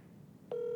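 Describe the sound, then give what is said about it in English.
A faint hum gives way to a steady electronic phone tone, like a call ringing on the line, which starts abruptly halfway through and holds clear and continuous to the end. “The Bush Light phone line is ringing.”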